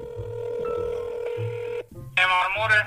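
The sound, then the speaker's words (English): A telephone call to a mechanic rings out on the line: a steady, droning ring tone holds for about two seconds, then breaks off into a brighter, louder buzzing burst. “We realized we had to get this fixed immediately, so we called up some mechanics and asked, hey, can you fix this?”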